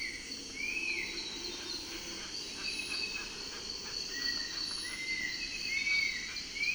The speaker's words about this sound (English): In the canopy above me, a cinnamon attila, which is a type of flycatcher, loudly whistles his musical dawn song. Reminds me of our wood peewee back home, plaintive whistled phrases repeated